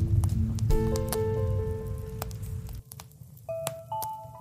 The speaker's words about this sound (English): As the rain subsides, the atmosphere becomes lighter.